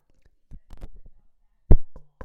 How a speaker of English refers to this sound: That's me knocking on wood.